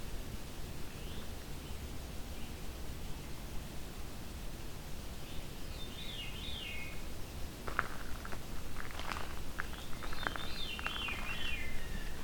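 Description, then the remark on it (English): A veery thrush sings two breezy, downward-spiraling phrases over steady hissing background noise, with a few faint rustles and clicks between the songs. “This is the thrush with the veer call, thus veery.”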